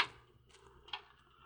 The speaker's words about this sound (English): You open that door, Mr. Martins.